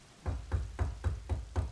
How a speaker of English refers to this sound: Will you just let me knock on the door? Sure. Go ahead.